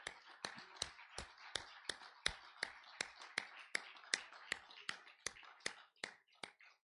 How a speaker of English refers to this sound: Clap of praise.